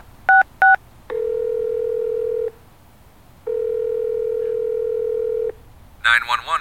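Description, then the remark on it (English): Two quick cell phone keypad beeps sound in succession as someone dials 911, followed by two long, steady ringing tones on the line, before a voice starts speaking at the very end. “dials 911.”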